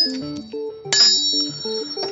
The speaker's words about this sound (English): I love that bell. It's definitely a closing bell.